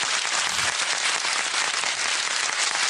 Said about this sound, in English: That applause is very specifically for Carl Tanner. They love him here in the auditorium.